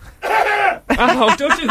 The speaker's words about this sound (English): Hang on, I'm just going to have to cough.